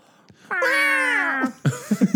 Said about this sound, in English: It's like a cat. Yeah. When they're like a cat siren.